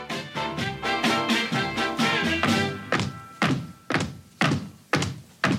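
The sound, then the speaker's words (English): Foot stomps as a signal: a steady run of heavy stomps, dull booming thuds landing about twice a second, first over a sustained musical tone and then alone, slowing toward the end. “You know, the old foot stomp signal.”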